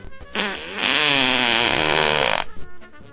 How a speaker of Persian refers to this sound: برای اینکه ممکن آدم به گوزگوز بیفته.